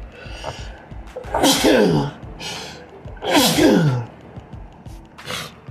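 A person sneezes twice, loud, each sneeze preceded by a sharp inhaling gasp, followed by a shorter breath at the end. No talking.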